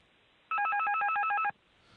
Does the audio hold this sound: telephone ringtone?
yes